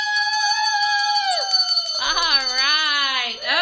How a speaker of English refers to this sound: And so we want to take a picture of him ringing the bell.